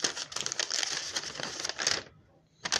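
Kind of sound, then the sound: household object, paper being crumpled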